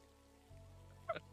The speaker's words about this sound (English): Oh, well, sorry, I can't hear you over the rain.